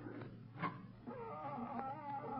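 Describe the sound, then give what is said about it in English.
A cat howls in a long, wavering wail that rises and bends in pitch, following a short sharp cry, loud and alone with no talking. “It sounds like a cat. That's the loudest cat I've ever heard.”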